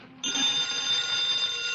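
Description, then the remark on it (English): A telephone bell rings loudly and steadily, one continuous ring that starts suddenly and keeps going with a bright, rattling metallic tone. No one speaks. “Answer the phone.”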